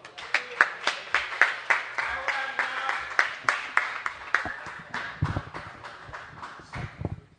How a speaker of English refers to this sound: But next person coming up, great performer. She's been supporting me for a while. Can y'all clap it up? She may be a little bit nervous